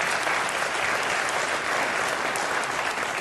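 Steady, dense applause from an audience fills the whole stretch, many hands clapping at once in a continuous, moderately loud wash with no voices standing out.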